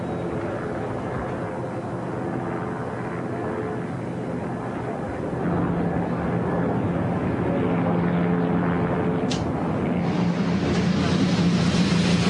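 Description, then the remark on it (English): Four IndyCar race car engines rumble to life together along the starting grid of a street race in St. Petersburg, a dense, steady mechanical drone that grows louder about halfway through and keeps building, with no voices over it. “Four cars roll to life along the starting grid.”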